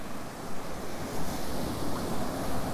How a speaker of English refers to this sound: Very noisy sea, not even that rough. I mean, it's just not even, no big break or anything.